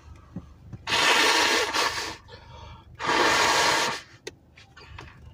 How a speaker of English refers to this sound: Had to blow my nose. Still sick.